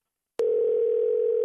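A phone call's outgoing ringing tone: a single steady, mid-pitched electronic hum that starts abruptly and holds at an even, moderate loudness with no voices.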